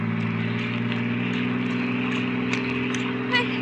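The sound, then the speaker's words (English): A steady, droning car engine hums continuously at an even pitch, a low rumble with constant loudness, as if heard from inside the moving car as it is driven along a road heading up to Laurel Canyon. “Please, let me out of this car.”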